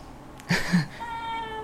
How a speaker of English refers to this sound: Oh, he demands snack. Man, that's a loud meow. Yeah, that's a very, very loud meow.